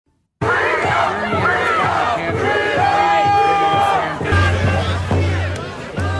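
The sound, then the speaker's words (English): A crowd at a demonstration of protesting lorry drivers in the city of Ottawa, against coronavirus restrictions, shouts and chants continuously, loud voices overlapping, with a steady low horn-like drone and occasional sharper tones cutting through. “It's an illustration of some of the demonstrations involving protesting lorry drivers still going on in the city of Ottawa.”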